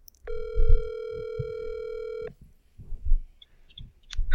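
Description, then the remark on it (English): A phone line rings out on an outgoing call: one steady, buzzy ringback tone lasting about two seconds, clear, over low handling thumps, followed by quiet rustling. “What's the number? Let's call it.”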